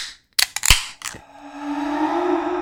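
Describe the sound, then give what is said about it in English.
A bottle is cracked open with a quick cluster of sharp clicks and a pop, then a steady fizzing hiss with a rising gurgling tone as a dark orange to rust-red drink is poured. No one talks. “You want to crack it open?”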